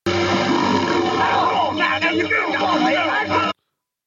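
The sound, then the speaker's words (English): A crocodile crawling out of the water lets out loud, pig-like grunting noises, a steady run of rough, throaty tones with rising and falling squeals that lasts about three and a half seconds before cutting off. “This crocodile crawls out of the water and is 100% making pig noises.”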